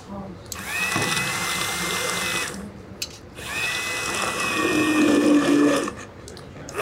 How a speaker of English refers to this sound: Once the fava beans had cooked down and the yellow split peas were fully softened, it was time to finish the dish with a handheld blender.